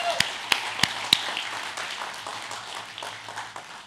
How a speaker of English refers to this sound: Can we give him a round of applause for that?